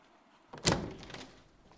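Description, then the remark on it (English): A single door sound with a solid thunk, like a door being pulled open by its handle, rising quickly and then fading over about a second. It is clear, with no talking. “When you're ready, take the handle of the door and open the door and walk through.”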